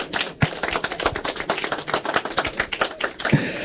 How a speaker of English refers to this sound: That's a clap.